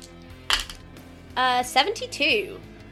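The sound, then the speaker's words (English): A pair of percentile dice (d10s) is rolled during a tabletop role-playing game, giving a brief, bright clatter on a hard surface, followed by voices talking. “Roll me a percentile.”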